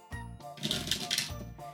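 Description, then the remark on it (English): A quick riffle of a deck of conversation cards being shuffled fast on a microphone: a dense burst of rapid flicking clicks lasting under a second, with a steady low hum before and after. “So I'm going to shuffle these real fast on mic.”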